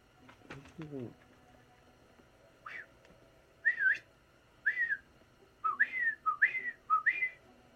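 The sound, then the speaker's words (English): A series of short, rising-and-falling whistled notes repeats in uneven bursts, clear, after a brief low rumble and soft voices at the start. “You hear whistling.”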